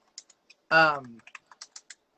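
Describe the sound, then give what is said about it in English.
Irregular, crisp clicks of typing on a computer keyboard as someone prepares news, with a brief voiced hum cutting in near the start before the keystrokes carry on. “Sounds like you're typing something up.”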